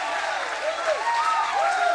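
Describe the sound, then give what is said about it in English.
A crowd of faith people in a grandstand cheers and applauds steadily, dense clapping blending with rising and falling whoops and shouts from many voices, sustained at an even, loud level throughout. “Somebody shout and give a cheer in the grandstand no matter what you're seeing.”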